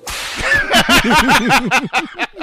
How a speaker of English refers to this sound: In the soundboard, we have a whip noise, and this is normally where I would hit it, but I feel like this would be distasteful.